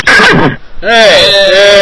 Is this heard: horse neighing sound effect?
yes